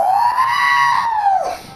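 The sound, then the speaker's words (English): A human voice imitates R2-D2's shrill electronic scream as he spins out of the planet, a loud sustained high wail that holds steady, then swoops sharply downward and fades out, alone. “That's how R2-D2 screams when he spins out of the planet.”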